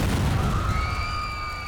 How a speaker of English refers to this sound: The young mother had little time to wonder, because shortly after the men arrived, the walls of the church exploded.